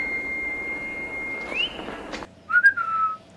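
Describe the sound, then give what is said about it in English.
A person whistles a short signature tune: a long steady note that slides upward, then a quick burst of warbling, shifting notes before it stops. No one talks. “But you take a sip anytime the signature whistle is heard.”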